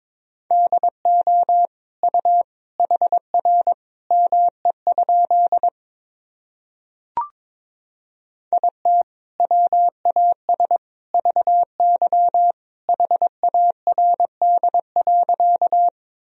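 Morse code sentences from the top 300 words and abbreviations, keyed at 22 words per minute in a steady, mid-pitched beeping tone, quick dots and dashes forming two bursts separated by a pause with a single sharp click, no voices present.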